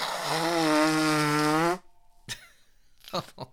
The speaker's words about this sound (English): I sneezed, I burped, now I'm gonna blow my nose.